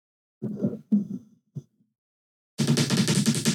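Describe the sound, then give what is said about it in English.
A few muffled taps and thumps, a short pause, then a dense, continuous burst of rapid keyboard typing clattering along steadily until the end. “I'll set it like this and I'll just type like this. Yeah. Like really quickly, like just rapid fire.”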